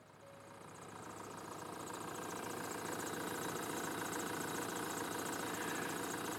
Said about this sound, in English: But right when she finished her sentence, he had already started the truck and was driving away.